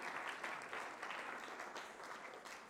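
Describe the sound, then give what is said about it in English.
An audience applauds the catering team and the people who moved chairs and tables, steady dense clapping spread across many hands, sustained at an even level throughout without any voices standing out. “Let's give them a hand.”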